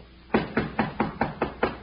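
Seven quick, evenly spaced knocks on the wooden door of Pennyworth's office at a bank, fairly loud, in a brisk steady rhythm after a brief quiet moment. No voices are heard.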